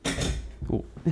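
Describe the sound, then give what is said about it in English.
A muffled knock as someone bumps into a stool, followed by a couple of softer wooden thuds and scrapes over about a second, with faint voice-like sound underneath. “I hit a chair. I hit a stool.”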